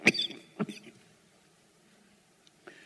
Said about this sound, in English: Okay, I'll deal with a cough. Tickle in my throat first.